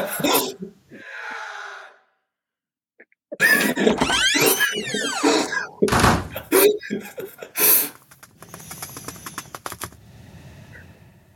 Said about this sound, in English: Dude, why is this voice mod breathing thing not cutting off?